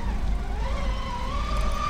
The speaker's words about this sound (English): This RC boat that's just flying around here is kind of wild. Yeah, it is. The thing is moving and shaking.